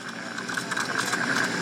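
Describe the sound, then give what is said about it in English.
Steady, hissing steam from an espresso machine's wand frothing milk, with a bright whistling tone that wavers and climbs slightly over its constant, unbroken rush. No voices are heard. “But she sent me the very appropriate sound of milk steaming.”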